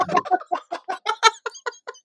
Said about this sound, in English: That was timed perfectly where you're just pouring yourself a glass of wine.